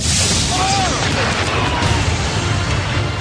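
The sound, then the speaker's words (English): Deep, rolling thunder from lightning rumbles through a steady, loud roar of wind and rain during a tornado storm under a tornado warning in Dawson County, filling the whole clip without letting up. “I hate lightning.”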